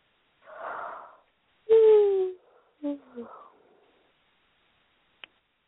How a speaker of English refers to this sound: Sorry for the yawns.